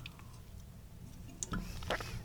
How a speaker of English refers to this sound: Excuse me, I'm going to take a sip of my bubbly water, some watermelon bubbly water, still stuck in summer over here.